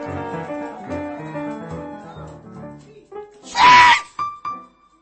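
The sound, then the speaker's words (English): A crowd of voices wails and cries out together in prayer in a dense, overlapping drone, then one loud, shrill scream bursts out near the end, followed by a few shorter yells. “Come on, scream!”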